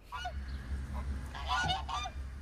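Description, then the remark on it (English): Several guard geese honk loudly in short, overlapping calls, a cluster of harsh nasal honks over a steady low rumble of outdoor background noise, as they patrol the perimeter of a prison in southern Brazil. “The honking birds patrol the perimeter of the prison to make sure inmates don't escape.”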